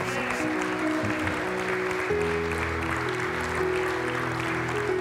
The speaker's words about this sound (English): Come on and give me a hand clap of praise.